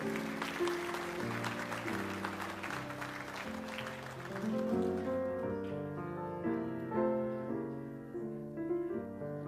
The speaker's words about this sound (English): Give them a hand clap today.